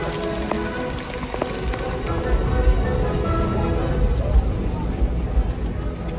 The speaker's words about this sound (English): It is raining really hard, as you can see.